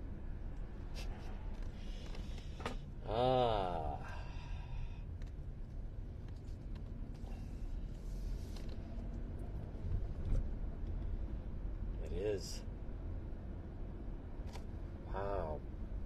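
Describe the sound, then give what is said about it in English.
ATV engines rumble and drone steadily along a street, one ATV then another passing, with engine noise rising and fading amid outdoor wind and background ambience. “And there's another ATV.”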